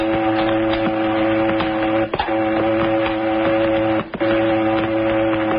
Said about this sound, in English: No, not passenger. That'll be a cannery boat. One of the boats that service the fishing canneries. They carry passengers, when and if there are any.